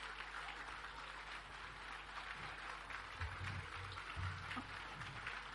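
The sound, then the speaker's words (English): A crowd at a prayer gathering claps hands together while praying, without an instrument, in a dense, steady wash of applause, with faint low voices murmuring underneath toward the end. “Clap your hands and keep praying without an instrument.”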